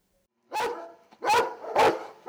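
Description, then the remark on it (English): A military working dog barks three times in close succession, loud and deep, each bark a sharp, forceful burst with brief pauses between, and no voices present. “If you could pick your military specialty out of the Help Wanted section of your local newspaper, this one would read, Must Love Dogs.”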